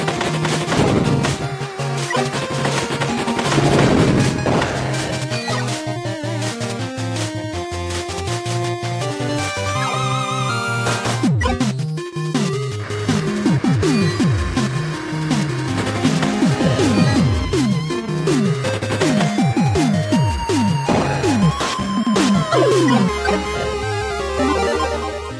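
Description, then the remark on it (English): A loud, driving video game soundtrack plays without pause, busy with bright synth lines and sweeping melodic runs, while sharp bursts of gunfire from shooting enemy soldiers crackle through the dense mix. “Now everything is just full of all these enemy soldiers that I have to shoot. And the soundtrack, fucking bang, man.”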